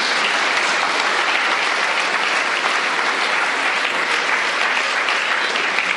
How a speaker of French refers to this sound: I think we should give her a clap, don't you? Alors, est-ce qu'on pourrait pas l'applaudir, n'est-ce pas?